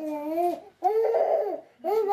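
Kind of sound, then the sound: human body sound, baby babbling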